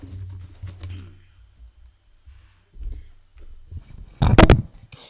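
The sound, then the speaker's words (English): Low rumbling and soft shuffling noises lead up to a sudden loud, sharp knock as a microphone bumps into a door, followed by a brief fainter rattle. “I've knocked one microphone into the door.”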